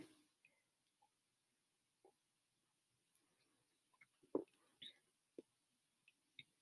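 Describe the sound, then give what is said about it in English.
Quiet, wet mouth sounds of someone sipping tea: scattered soft clicks and small slurps, with a brief louder cluster of gulping noises in the middle, no talking. “Let me get another sip of my tea here.”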